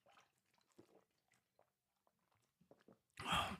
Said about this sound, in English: Let me take a little drink of water here.